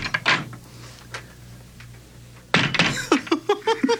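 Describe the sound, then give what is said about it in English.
A heavy door at the court of King Nebuchadnezzar of Babylon, opened by a guard, thuds, followed by a louder burst of movement and a series of short, rhythmic creaks as it swings open over a low steady hum. “Open the door, guard, that we may depart.”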